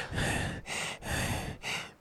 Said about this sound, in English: That's …. She's, like, panting.